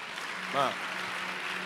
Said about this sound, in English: Now listen. Please listen. Because I think you are clapping for me and that's wrong. That's not it.